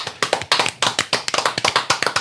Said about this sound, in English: But before we do that, let's just give one a round of applause for getting through.